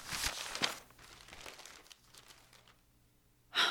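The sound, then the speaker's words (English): Newspaper pages rustle and crinkle as someone shuffles through a newspaper searching for an article. A burst of handling comes at the start, softer scattered rustles in the middle, and a sharp crisp flick at the end. “It was in the paper this morning.”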